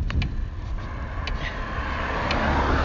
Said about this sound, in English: But I'm going to enjoy it while I can, because the panniers aren't going well today, unfortunately. You might be able to hear that, the bike's making a funny knocking noise, which is a bit weird.